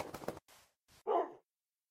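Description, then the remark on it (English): A dog, Wolfie, barks several times in quick, uneven succession, short sharp yelps, with the last bark the loudest, then silence. “Woof, Wolfie.”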